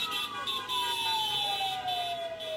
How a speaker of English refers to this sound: we'll have to figure that trick out next time that there's another one of these car protests. But this is what it sounds like and looks like when you go to one of them.